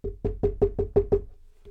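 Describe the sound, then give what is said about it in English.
A run of about seven quick, evenly spaced knocks on a wall, solid and hollow-sounding, followed by a brief quiet pause and one softer final tap. “Ever since they tore down the old hospital, we're starting to hear something knocking on our walls.”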